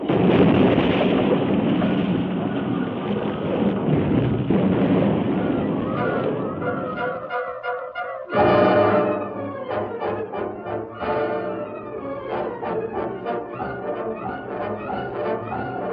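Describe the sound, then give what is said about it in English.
A train derails at a curve: a loud, steady rumbling roar gives way to shrill metallic screeching as the cars leave the rails and roll over, then a heavy crash into great boulders lining a slope and a second impact, followed by ringing, clattering metal. No voices. “The cars left the rails at the turn and rolled over and over until they crashed into the great boulders that lined the slope.”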